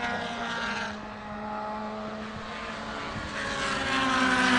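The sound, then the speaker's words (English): Several race car engines drone loudly together in a steady, buzzing roar, with a slight dip and then a swell of noise toward the end as cars pass by, including the race leader. “And our leader's just passing us here.”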